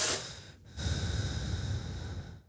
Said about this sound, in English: Hey man, why the fuck you breathing in the mic like that, man? Why are you doing that, man?